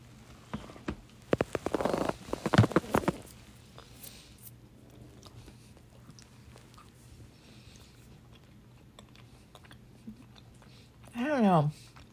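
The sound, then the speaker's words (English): A toffee cookie is bitten with a burst of loud, crisp crunches, followed by long stretches of faint, steady chewing under a low hum, ending with a short vocal sound. “It's not a bad cookie.”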